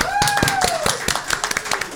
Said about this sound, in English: And before we leave, I just want to, can we get a round of applause for Catfish?